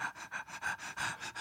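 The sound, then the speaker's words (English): A person imitates a Great Dane panting: about seven quick, rhythmic breathy huffs in a row, airy and hissing with a throaty edge, steady in loudness, and no talking. “That was a Great Dane. I switched dogs.”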